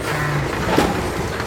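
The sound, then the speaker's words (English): A semi-truck's engine rumbles steadily with broad road noise and a low droning hum, plus a brief hiss midway, as the truck pulls over and stops for a hitchhiker. “Oh, there's a semi-truck. Well, here goes nothing. Oh my gosh, they're stopping!”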